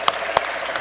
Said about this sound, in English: Everyone, give them a hand clap. They have proven their worth.